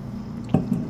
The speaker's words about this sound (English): But we're going to be drinking, we're going to stick to Bissell Bros right now. And I poured like a noob, so that's not great. So I'll just drink it from the can to start.